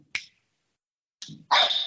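A dog named Luna barks: one short, sharp bark, a pause, then a louder, longer burst of barking. No one speaks.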